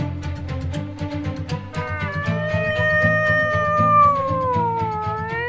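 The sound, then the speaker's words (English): A cat lets out a long, wavering yowl that swells and slides like a siren, loud and drawn out for several seconds over a steady, rhythmic background of music. “Is this a siren or a cat? It's a cat siren.”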